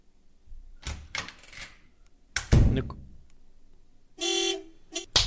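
A few sharp slaps of a hand striking someone, the loudest a heavy smack midway, followed by two short, loud car horn honks.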